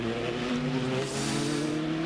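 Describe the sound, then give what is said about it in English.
A race car engine roars loudly for a couple of seconds, a sustained high-revving drone whose pitch bends slightly as it passes on the track, with no voices: Frank Montani's car chasing down Simon Pagenaud in a race. “this is the car that's trying to chase him down”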